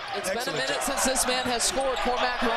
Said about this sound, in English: You can hear the echo reverberating off those metal bleachers.